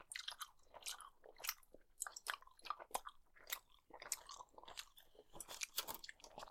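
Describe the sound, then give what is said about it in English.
Wet chewing of a soft, gummy candy slab with a red strawberry or cherry flavor, with sticky smacking and squelching bursts repeating irregularly throughout, quiet but intimate, with no talking. “You're chewing pretty conservatively over there.”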